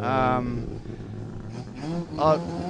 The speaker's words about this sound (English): I'll just wait for the wankles to go past, and before you think I'm swearing, it is a wankle engine.